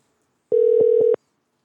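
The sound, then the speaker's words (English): A telephone tone as a call is dialed and rings out: one steady, mid-pitched electronic hum lasting under a second, punctuated by a few soft clicks, with no voices. “I want to try to get Joe and Stu on just to see if they want to chime in real quick. And I'm going to try Joe right now.”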